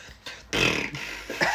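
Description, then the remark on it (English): A voice imitates wet, sputtering farting noises in a few quick bursts, with one longer, buzzy blast in the middle, fairly loud with no talking. “Actually, it is farting noises.”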